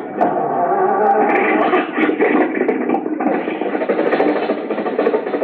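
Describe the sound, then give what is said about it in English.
A car engine in a garage grinds and rasps as it cranks, then catches and settles into a steady, rough, rumbling run that holds loud and even to the end, with no voices. “The motor's going.”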